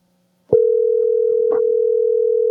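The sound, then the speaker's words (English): A steady, continuous telephone dial tone starts abruptly after a brief click and holds at an even pitch, loud, with faint background noises beneath it. “I just got to fix the phone line here.”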